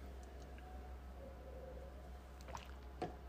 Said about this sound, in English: Okay. Sorry. I just have a sip of water.